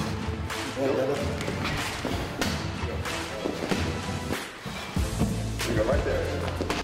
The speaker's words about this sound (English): This burpee here, we use a physio ball, we can bang it off the wall, go down, burpee, and you gotta catch the ball.